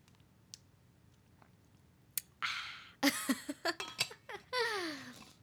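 Someone takes a drink of water: a few soft clicks, a rush of liquid, then a quick run of wet gulps and swallows ending in a breathy exhale. No talking.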